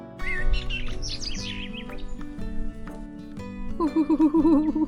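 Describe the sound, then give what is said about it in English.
Bright, twittering winter bird chirps by a chilly lake at Bharatpur Bird Sanctuary in Rajasthan, India, flutter over a steady tonal music bed, busiest in the opening seconds, followed by a warbling, wavering call near the end. No one speaks. “it's chilly willy by this lake. I spot heaps of birds.”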